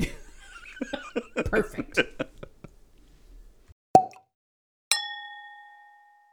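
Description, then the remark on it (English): Liquid glugs and splashes in quick bursts as decanted wine is poured into glasses, followed by a sharp tap and then a bright, ringing glass clink that fades out slowly. “We've filled our glasses from our decanted wine and are ready to dive into this.”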